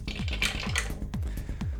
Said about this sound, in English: Let me roll my dice. There's a lot of them.